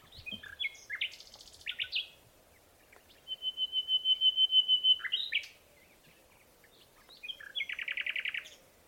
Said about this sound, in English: Going to be focusing on the common nightingale. I think first listening to what a nightingale sounds like.